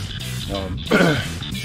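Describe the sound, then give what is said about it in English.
A person whose throat is dried out clears their throat and gives a short, raspy cough, one rough burst in the middle of a brief, otherwise quiet moment. “Sorry about coughing like that. I'm so dried out.”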